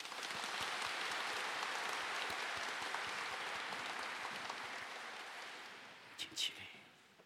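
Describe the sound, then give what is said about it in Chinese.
An audience at a Catholic Mass in Shenzhen, at the Lunar New Year of the Dragon, breaks into sustained congratulatory applause, a dense crackle of many hands clapping that holds steady for several seconds, then thins out and fades, with a couple of brief louder sounds near the end. “掌声祝贺。”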